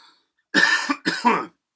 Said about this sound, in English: People coughing all the time.